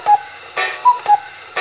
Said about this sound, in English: Do I have my cuckoo clock? Where's my cuckoo clock?